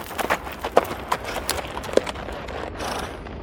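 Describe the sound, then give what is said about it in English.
Horse hooves clip-clop in an irregular run of sharp, hollow knocks over a soft rustling background, fairly loud, with no one speaking. “Horses.”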